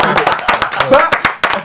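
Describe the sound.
Several people on a talk show clap for a guest musician in quick, uneven bursts, about a dozen sharp, fairly loud claps, with voices murmuring and talking underneath.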